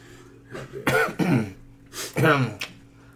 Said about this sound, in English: I really do want to clear my throat now.